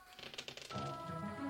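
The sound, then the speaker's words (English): Dice clatter across a hard table in a quick burst of rattling clicks lasting under a second, rolling a 2 for Slytherin house points in a scoring game. A steady sustained tone follows, with no voices. “And one more roll.”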